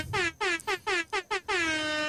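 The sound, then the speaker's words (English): An air horn sound effect blares in a rapid series of short, loud blasts, then ends on one long sustained honk. No one speaks over it. “Air horn, please.”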